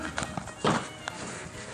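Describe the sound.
A person jumps while voicing a short, punchy video-game-style jump sound, one loud burst with a quick breathy attack, followed by a few faint soft knocks from landing.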